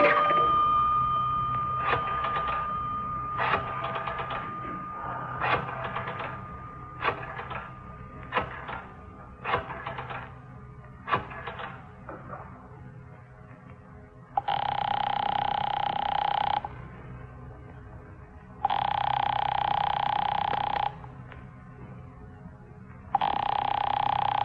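A series of sharp clicks, like a phone being dialed, then a telephone rings three times in loud, buzzing two-second bursts separated by short pauses. No one speaks.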